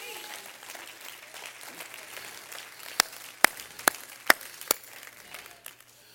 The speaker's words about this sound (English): Would you clap your hands again?